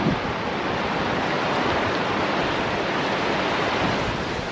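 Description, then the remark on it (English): A steady, loud roar of a raging river fills the whole stretch, dense and unbroken like whitewater churning, with no voices, outdoors in windy, cold weather of about 30 degrees. “I would not like to fall into that river. It looks like it's raging pretty hard.”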